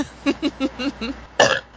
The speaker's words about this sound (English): Burps a lot. That wasn't me! That wasn't me!